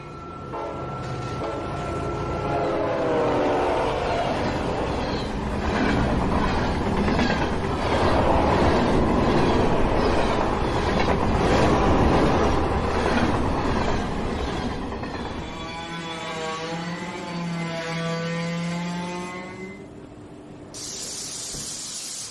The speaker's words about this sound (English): On a dark and stormy night, in a town at the base of a mountain, a train is pulling into its station.